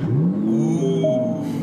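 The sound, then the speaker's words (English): An Aston Martin's 12-cylinder engine is fired up with a start button, its pitch sweeping upward in a quick rev before settling into a steady, rumbling idle with a faint whine above it. “Why don't you fire it up and we can get out of here? Start button.”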